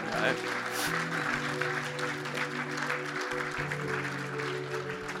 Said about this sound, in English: So I want to encourage the person that put up the hand to, I congratulate you. Can we give that person a big clap?